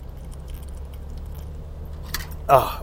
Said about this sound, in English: So I'm going to just take a little protein drink. I just worked out. I'm going to take a little sip.